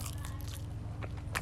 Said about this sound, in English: I'm a toothpick guy. Chewing toothpicks. Yeah.